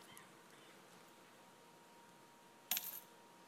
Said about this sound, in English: And a poor widow came and put in two small copper coins, which make a penny.